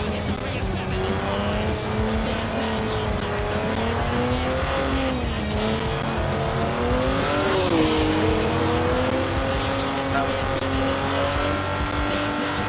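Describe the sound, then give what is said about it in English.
A sports car engine revs loudly and steadily while being driven, its pitch rising and falling over several seconds, with tires squealing in places beneath the roar. “I'm just gonna like drive like most sports car drivers do.”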